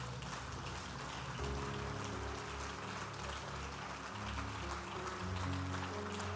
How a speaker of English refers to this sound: Clap your hands and praise him for his word.